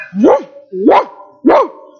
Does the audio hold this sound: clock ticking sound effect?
no